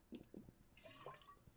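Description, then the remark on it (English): Wet gulping and sloshing as someone takes a few quick sips of water, with soft liquid trickles and no talking over it. “I was drinking Animal water.”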